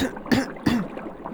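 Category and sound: human body sound, coughing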